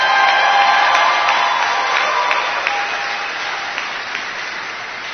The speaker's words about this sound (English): So why don't we give a big cheer and an applause to our brothers and sisters that are online.